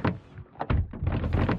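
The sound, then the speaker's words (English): Four doors of two cars open and slam shut in quick succession, several dull thunks and clunks overlapping over a low rumble, with no voices. “Four doors opening and closing.”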